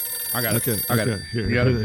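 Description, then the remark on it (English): A phone rings with a steady electronic ringtone that holds high, sustained tones and loops through about two seconds of lively, voice-like melody, loud. “What do we got? Where's the phone? Where's the phone?”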